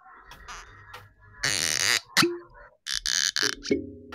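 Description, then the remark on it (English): A rapid compilation of varied cork-popping sounds gathered from several shows over recent weeks, seemingly made by mouth: sharp pops, bursts of hissy fizz and a few squeaky, croaking tones, one after another with no talking. “So these are all the cork pops that we've done across the shows over the last few weeks.”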